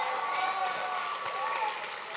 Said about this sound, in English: Jump up on your feet, everybody, and give that God the greatest hand clap that you've ever given anybody.